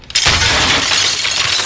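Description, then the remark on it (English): A loud crash of breaking china, a sharp impact followed by a sustained, bright clatter of shattering pieces lasting over a second, with no talking. “That's what happens when you let a dog loose in a china shop.”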